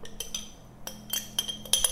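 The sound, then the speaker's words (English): About 150 grams of store-bought kimchi, with its brine, being poured into a bowl: a handful of bright glassy clinks and taps at irregular intervals over a soft, wet shuffle, with no talking. “I'm just gonna pour this all into my bowl.”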